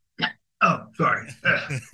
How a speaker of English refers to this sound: Oh, sorry. Throwing up in my mouth a little bit. Clearing your throat? Are you getting teary? I'm not sure. I had some goo in there.